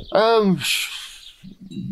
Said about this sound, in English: Hello. He wants food, of course. Do you like living in a place where a bird can just fly up and say hello?